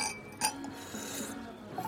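A light clink of glasses in a toast, a brief bright chime with a faint ringing tail, set against a quiet murmur.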